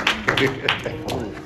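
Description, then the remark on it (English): A handful of sharp, scattered handclaps land at an uneven pace, mixed in with people talking over them. It sounds like a brief, sparse round of applause rather than sustained clapping. “I'm going to give this man a clap of applause.”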